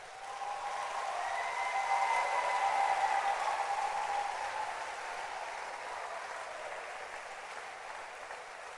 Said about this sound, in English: Clap your hands again.